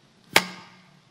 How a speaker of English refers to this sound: Was that a clap or something? It was a well-timed clap. Digital clap.